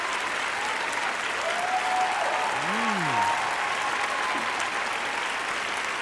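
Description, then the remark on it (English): Steady, dense applause from a crowd, a continuous wash of clapping with a few whoops and cheering voices rising and falling over it. “This is a lively crowd for Tuesday, yes.”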